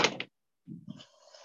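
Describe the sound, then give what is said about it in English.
A door is pushed shut: a brief airy swoosh, then a dull low thud followed by a faint rattle of the latch settling, with no voices. “Shut this door.”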